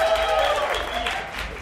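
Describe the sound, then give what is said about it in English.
An audience cheers and applauds steadily, with dense clapping and scattered high whoops that rise above the crowd noise, holding at a fairly even loudness throughout. “You can, when you cheer for them in terms of how much you like each one, so we can compare.”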